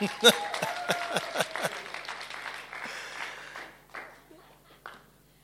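A group bursts into applause, dense clapping at first that thins out and fades within a few seconds, leaving scattered claps and faint murmuring.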